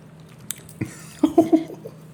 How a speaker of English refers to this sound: Yeah, let's chew for the rest. The rest of the time.